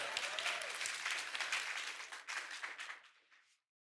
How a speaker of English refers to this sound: So You can applaud for her too. I mean, hers is really good.